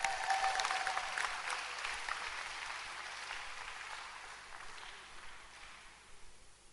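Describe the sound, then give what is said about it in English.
An audience breaks into sustained applause for the choir, a dense crackle of many hands clapping at once that starts strong and gradually thins and fades over several seconds, with no voices. “But our choir is good. Clap for the tulips.”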